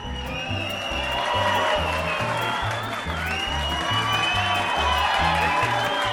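A crowd cheers and applauds steadily, with whoops and shouts rising above dense clapping, while a pulsing low beat of music runs underneath the whole time.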